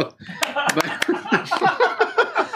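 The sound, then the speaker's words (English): Four sharp, loud hand claps in a quick, uneven burst, with voices and laughter following right after and continuing over the rest. “If you're clammy, you know it. Clap your hands.”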